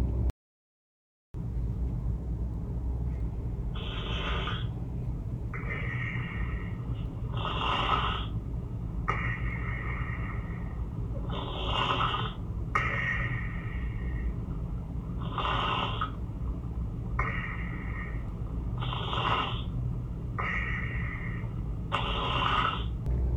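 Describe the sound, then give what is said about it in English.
Loud, rhythmic snoring from a 3-year-old child patient, about ten rasping breaths over a steady low rumble, with no talking. “Right, well, you can hear from that incredibly loud snoring. That was a 3-year-old patient I've seen recently whose parents were concerned about the child's sleep and the fact that it had been restless sleep and poor sleep.”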